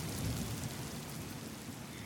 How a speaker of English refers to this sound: It's raining. It's a big rainstorm. And it's just about to stop.